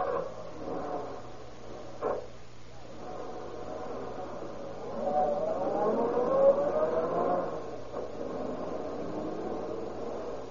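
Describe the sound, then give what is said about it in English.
A car engine idles with a steady rumble, then revs up and accelerates, its pitch climbing through the middle before settling into a sustained drive. There is a brief knock early on, and no one speaks. “Get in the car and we'll drive around a bit.”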